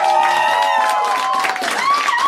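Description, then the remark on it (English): Loud, steady audience applause with cheering and whoops, a dense wash of clapping filling the whole moment with some high voices rising over it. “Don't applaud Erin being sick, you assholes.”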